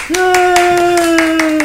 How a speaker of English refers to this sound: Got that kid in the studio. Yes, finally, an audience. An audience. Give us a round of applause, buddy.